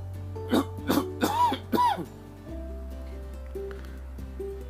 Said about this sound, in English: Sorry, here's an allergy cough coming on.